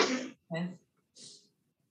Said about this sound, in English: It's just the day of sneezes, apparently.